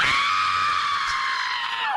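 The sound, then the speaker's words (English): A single loud, sustained scream in the style of Meryl Streep's scream, done to release stress, held at full volume for about two seconds, shrill, cutting off abruptly at the end with no talking over it. “it's becoming an internet trend calling the Streep scream”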